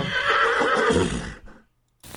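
horse neighing and whinnying

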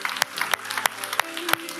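audience clapping

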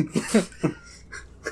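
cough

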